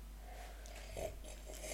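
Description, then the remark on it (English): Two short, airy slurps of coffee, one about midway and one at the end, each a quick wet sucking rush over a low steady hum, with no talking. “That's just a very lovely slurp.”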